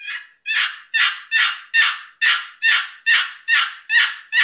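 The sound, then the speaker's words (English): A wooden box call imitates a raspy hen turkey, sounding about ten loud, scratchy yelps in a steady, even rhythm, low and slow, with no talking. “Okay, and then, like you're saying, low and slow, and that raspy hen on this box, it just, listen to this.”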